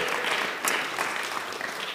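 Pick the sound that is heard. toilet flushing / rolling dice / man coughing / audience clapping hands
audience clapping hands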